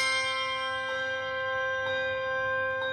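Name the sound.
handbells ringing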